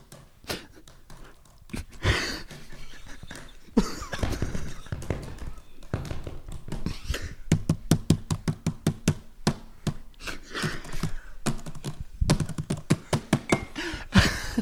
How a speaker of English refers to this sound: There's a bunch of guys walking around with like brooms in the kitchen. Just like hitting them and like doing a lot of beats.